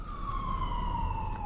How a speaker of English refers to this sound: Oh, that's one of those special ambulances. If you're a certain religion, you got to get the special ambulance or you would rather die, right? I think that's how that goes. That was one of those special ambulances.